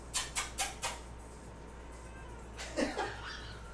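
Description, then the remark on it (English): A female cat lets out a single drawn-out meow for food near the end, clear, preceded by a few quick rustling taps against a quiet background hum. “God, the way she looks at me and she just kind of goes, meow.”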